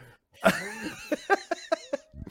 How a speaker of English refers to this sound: No, I'm just clearing my throat.